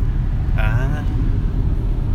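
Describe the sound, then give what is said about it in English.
A car heater fan blows steadily inside a vehicle, a constant low rumbling whoosh throughout, with a brief faint voice-like tone near the start. “I think you might need to turn the heater off just because... Yeah, I already. I just hear the windscreen.”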